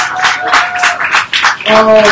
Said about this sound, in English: Please give yourselves a round of applause and thank you for coming out.